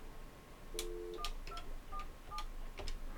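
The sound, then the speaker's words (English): A telephone line connecting as a caller dials in: a longer electronic tone followed by a quick series of five or so short beeping keypad tones, clear, with faint clicks and hiss and no voices. “I think that's her ringing in as we speak.”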